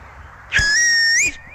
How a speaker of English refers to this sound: Give us your cow whistle, which attracts all the cows.